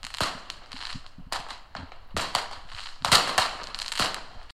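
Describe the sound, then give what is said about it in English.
A rapid series of sharp fireworks bangs and crackling bursts, about a dozen pops in irregular succession with fizzing tails, moderately loud, with no voices. “Such tiny rockets were used as weapons during war and as fireworks for celebrations.”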